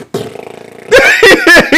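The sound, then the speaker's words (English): A voice makes a low, sputtering raspberry, imitating a queef, for under a second, then loud bursts of laughter take over. “It's a queef.”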